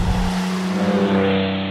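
A car's exhaust burbles and crackles on overrun, a steady low rumble with popping texture, loud, running continuously for under two seconds with no voices.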